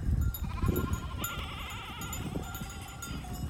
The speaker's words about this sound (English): Now, you in this really modern city, you can just see shepherds coming with hundreds of sheep.